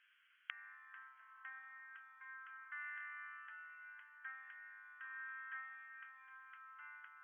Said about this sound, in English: You ring the helpline listed on the letter, but are on hold for 2 hours.